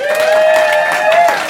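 Steady, dense audience applause at a comedy show for the comedians who performed that evening, with a sustained, whistle-like whoop or cheer riding over the clapping, loud and continuous throughout the short stretch.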